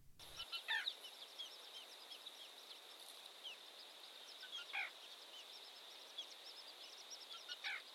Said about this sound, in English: And in its place is only the quiet day-end exhalation of the marsh and the bubbling and hopeful sounds of at least 2 newly hatched black rail chicks.